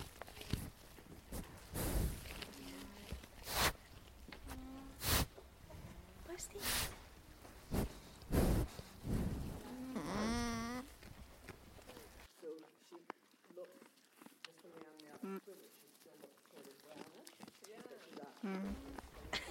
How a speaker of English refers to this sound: I had this obsession of trying to record their little hums and their crunching. They're eating hay. You got some of that, right? Yes. Okay, just listen to this for a second so you know what we're talking about.